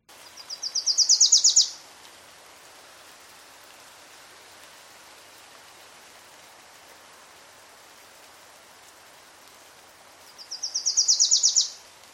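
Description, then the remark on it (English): A Wilson's Warbler sings twice, each song a rapid run of sharp repeated notes that swell louder and then cut off abruptly, separated by a long pause over a steady background hiss. “So here's a Wilson's Warbler singing.”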